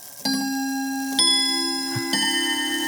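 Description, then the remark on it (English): A domestic chiming clock rings out the Westminster chime melody for the half hour, three clear bell-like notes struck about a second apart, each ringing on and overlapping the last, moderately loud. “Domestic chiming clock, I think is what it's called. Domestic chiming clock for a half hour.”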